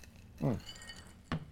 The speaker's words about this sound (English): Yeah, it is last call time. You got your alcohol in your glass, my friend? All right, one for the record books. Last call. Clink. Cheers, bro. Cheers, brother.